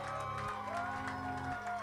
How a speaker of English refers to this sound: So please give a huge round of applause to all the amazing UBC musicians that we have.